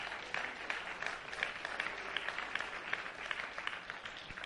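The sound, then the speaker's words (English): An audience applauds steadily, dense overlapping claps forming a continuous bright patter that holds an even loudness throughout, with no voices breaking through. “I'm expecting everyone who clapped to be there on the first day that we do that.”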